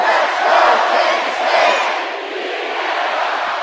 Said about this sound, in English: We're going to do a chant, if that's okay, a cheer. Is that all right? This side, let's go Kansas State. This side, beat Bama.